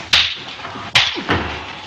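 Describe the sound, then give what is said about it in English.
Two loud, sharp face slaps from a film scene, one man slapping another in the face and being slapped right back, crack about a second apart, followed quickly by a softer third smack, with no voices, only a faint background hiss between them. “And this is the slap heard around the world.”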